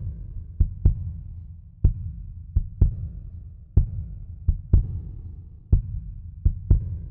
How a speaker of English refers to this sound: I wanted the kick drum to sound like a heartbeat in places